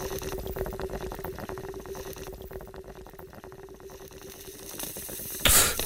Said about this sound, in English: You saw how I put the water in the bong